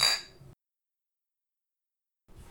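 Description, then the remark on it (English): Beer glasses clink together once in a toast, a bright ringing tap that fades over half a second, followed by near silence and a faint rustle at the end. “Let's cheers. Let's drink, brother.”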